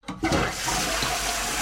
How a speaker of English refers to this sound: Can I stop the flushing now? It's putting me off.